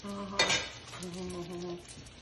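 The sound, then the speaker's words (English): Noodles and egg, made following a Jamie Oliver recipe, sizzle gently in a pan, kept quiet rather than frying hard: a soft steady crackle with a brief utensil clink near the start and a faint low hum underneath. “But you got to be careful because you don't want it frying. He wants it quiet.”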